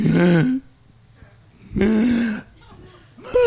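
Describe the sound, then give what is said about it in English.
A person vocally imitates their brother's pre-cry gasps: loud, strained, voiced intakes of breath, two full gasps with a pause between and a third just starting. “And all of a sudden, you heard the pre-cry gasps. They sound, you guys know this. It goes like this.”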